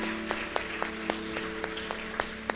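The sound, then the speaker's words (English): Scattered, evenly spaced hand claps, roughly ten sharp hits in a thin, fairly quiet round of audience applause for the people who helped with the fellowship hall, with a steady low electrical hum running underneath and no talking. “Again, everybody give a round of applause for all the people who helped do such a great job on that.”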